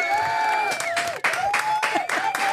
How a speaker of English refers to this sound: They love you. Thank you guys so much for that wonderful real clapping.